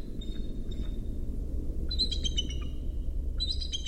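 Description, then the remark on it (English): Eagle calls in California after a wildfire ring out in two bursts of sharp, repeated chirping notes, with fainter echoing calls earlier, all over a steady low rumble of wind and a helicopter fighting the fire. “It's actually eagles in California during a wildfire, but I think it's after the wildfire, so you can still hear the helicopter trying to put it out.”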